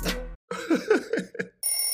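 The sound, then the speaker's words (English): A telephone rings: a short burst, then a warbling run of rising and falling tones, followed after a brief pause by a steady, bright high-pitched ring. No talking. “He don't want to stop and pick up the phone while he's doing somebody else.”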